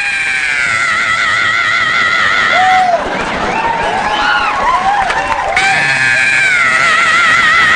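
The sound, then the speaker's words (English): A voice imitates an 80s heavy metal singer's piercing high scream, holding a long wailing note, breaking into a rough, noisy stretch, then wailing again. Loud, with no other sounds. “He come out with his leather pants on and just scream.”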